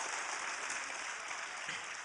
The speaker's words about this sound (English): Would you clap your hands and give him praise? Oh, would you clap your hands and give him praise? We just want to be close to Jesus.